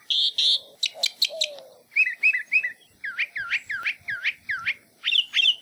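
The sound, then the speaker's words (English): A northern mockingbird sings alone and clear, running through a string of different whistled and chirping phrases, each repeated several times in quick bursts before switching to the next. “One of the most interesting things about mockingbirds is that they can learn hundreds of different songs and often mimic the sounds of other species of birds, as well as frogs, crickets, dogs, car alarms, and squeaky gates.”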